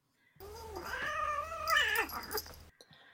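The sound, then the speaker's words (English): A cat named Tosca lets out one long, angry yowl, loud, its strained pitch climbing and wavering for a couple of seconds before cutting off. No one speaks. “but we are actually, Duarte is giving up his time to Anna Annalene's, one of their cats.”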